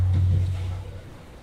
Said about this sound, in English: This is really a sweet hum. Ominous.